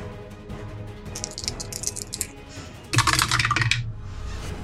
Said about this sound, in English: As I throw my dice on the floor.